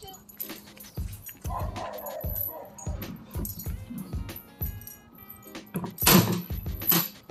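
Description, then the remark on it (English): A neighborhood dog named Million, belonging to a neighbor, barks repeatedly in short, irregular bursts, with one louder, sharper bark toward the end; faint thuds and background noise fill the gaps, and a voice briefly speaks. “Neighborhood dog won't shut his mouth.”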